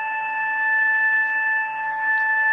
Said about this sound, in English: Yeah, I cannot hear you through that alarm, so... Why not? It shouldn't be that loud. It's really loud.